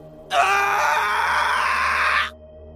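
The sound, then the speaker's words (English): A man screams loudly and continuously for about two seconds at 2:53 a.m., a single sustained, strained cry that starts abruptly and cuts off, with no other talk. “I was awoken at 2:53 a.m. by a man screaming.”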